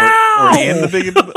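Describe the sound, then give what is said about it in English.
A house cat lets out one long, drawn-out meow whose pitch wavers and then slides downward, trailing off into a few short, broken sounds. “House Cat is trying to stop us.”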